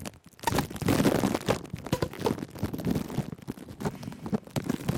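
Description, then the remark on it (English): A small piece of saran wrap, placed on a microphone and secured with a rubber band, crinkles and rustles directly against it, a dense, crackling texture of irregular bursts and scratchy friction that fills the whole clip with no one speaking. “And that is a little piece of saran wrap. So I'm just going to put this here on my mic.”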